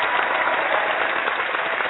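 A crowd applause sound effect: steady, dense clapping from many hands, a continuous hiss at an even loudness throughout, with no voices.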